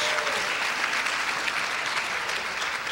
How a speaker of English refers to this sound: Would you give the Lord a clap offering of praise?